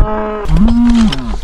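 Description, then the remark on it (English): Cattle lined up behind a fence, waiting to enter a new patch of grass, low in deep, drawn-out moos, one call sliding into another and a second rising after, fairly loud with a faint outdoor hiss behind. “Some of them are lowly mooing.”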